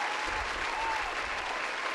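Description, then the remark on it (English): A burst of crowd applause, many hands clapping in a dense, steady patter that holds at a fairly loud level for the full two seconds, with no voices. “Y'all got hand claps, I forgot.”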